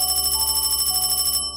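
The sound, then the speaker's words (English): A telephone in a hallway rings with a fast, bright metallic trill, one steady burst lasting about a second and a half before it cuts off abruptly. Nobody speaks. “The phone rang again and we shot up.”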